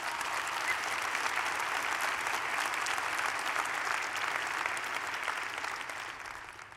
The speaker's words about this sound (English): So if you hear and you think you're the only one, you just heard all your friends clapping, telling you, that's me.